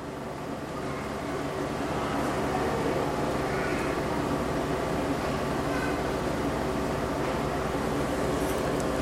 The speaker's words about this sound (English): I hear the fan humming up here, the projector.